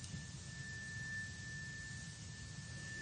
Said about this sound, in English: And let this third chime come into your body, into your cells, cleansing them and opening them to receive fully the frequencies of serenity.